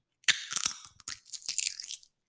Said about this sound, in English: They got to hear how crunchy it is. I'll crunch it with my fingers. If you don't want to hear it, just go 10 seconds. Yeah, okay. I'll crunch one with my fingers, guys.